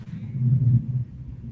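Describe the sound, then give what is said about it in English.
A low-flying military plane makes a deep, steady rumble, loud and sustained throughout, swelling slightly in the middle before easing off, with no voices over it. “That's a military plane that's flying low.”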